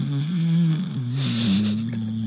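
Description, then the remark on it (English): A person does a loud, drawn-out imitation of snoring, one long rumbling, throaty rattle with a breathy hiss partway through, without other talk. “That was a good snore.”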